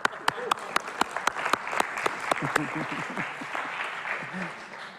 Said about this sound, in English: Okay, I got 2 minutes, 15 seconds left on the clock. So I clap for myself.